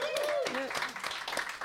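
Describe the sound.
A short burst of clapping from a few people, with voices whooping and talking over it, the claps a dense steady patter that holds throughout.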